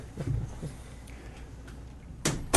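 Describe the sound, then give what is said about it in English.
A door is pushed shut: a soft, low thud early on, then a quiet pause and a sharp latch-like click near the end, with no one speaking. “Want to push that door shut”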